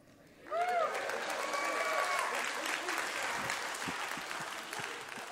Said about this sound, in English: What if you were just, like, one-on-one with somebody, and they asked you how you were feeling, you just started, like, kind of hooting and clapping your hands? It only seems to work in this sort of configuration.